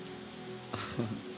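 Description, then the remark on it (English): Heavy rain pours in Kumasi in cold weather, in a steady, dense hiss that fills the whole moment without letup, with a brief murmur of a voice surfacing partway through. “Can you guys hear the feedback of the rain? You can hear it. It's raining seriously”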